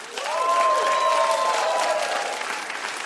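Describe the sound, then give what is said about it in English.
An audience breaks into dense, steady applause that holds for about three seconds, answering whether they still have dreams of failing a test, with a few cheering voices rising above the clapping before it begins to thin out. “Who, by applause, how many people still... I still have these.”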